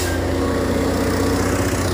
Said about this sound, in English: Oh, it's so loud, this truck. Oh wait, and it's turning my way too. Hello.